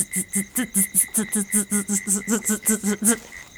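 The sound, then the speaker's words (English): A human voice imitates cricket chirping at a quick pace, with about fourteen rapid, evenly spaced chirps, each a short voiced burst with a hissy edge, steady in loudness. “I think if I try it faster, it'll sound more like the crickets.”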